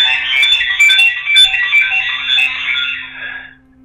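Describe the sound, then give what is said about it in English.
A cell phone rings with a loud, shrill electronic ringtone of rapid warbling beeps that runs steadily for about three and a half seconds, then cuts off. No voices are heard. “I couldn't stop my cell phone.”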